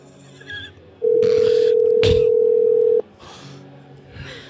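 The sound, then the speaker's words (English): A phone call's ringing tone, heard while adding a second caller to a call on a phone that is not an iPhone, sounds once as a steady, loud electronic tone lasting about two seconds. Faint muffled background noise comes before and after it. “Oh, I'm connecting.”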